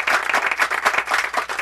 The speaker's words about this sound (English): And the crowd has some light applause.